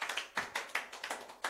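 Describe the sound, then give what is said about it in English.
An audience claps in praise of the Lord in a quick, uneven patter of sharp hand claps, a steady burst of applause lasting a moment with no voices over it. “Give the Lord a clap of him.”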